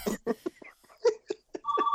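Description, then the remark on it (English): The speaker's female pet dog cries in a string of short, high-pitched whimpers that rise and fall in quick, uneven bursts, ending on a longer, steadier whine. “It's my dog. It is like a baby. I don't know why she's crying.”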